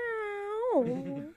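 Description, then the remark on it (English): A pet cat, heard over a phone, gives a single drawn-out meow, holding a steady pitch before sliding downward into a rougher, slightly growling tail. It is fairly loud, with no talking around it. “Sounds like a cat to me.”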